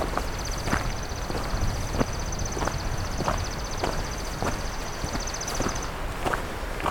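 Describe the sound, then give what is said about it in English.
Steady footsteps crunch along a hiking trail, about ten evenly paced steps, while a thin, high insect-like trill buzzes continuously behind them before cutting off near the end. “Well, the myrtle warblers moved on, or gone quiet, so let's keep on hiking here.”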